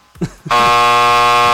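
A loud, steady electronic buzzer in a trivia quiz game blares with a harsh, harmonic-rich drone for over a second, cutting in abruptly after a brief burst of voice at the start.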